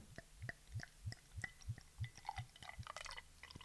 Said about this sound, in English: Yeah, pour some out for yourself there while you've while got it in your hand.